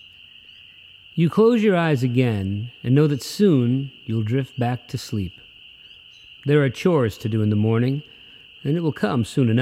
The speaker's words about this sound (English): Outside, the light of the moon is bright as it peeks between the curtains, and if you're still, you can hear the rustle of the leaves and the peepers outside in the distance.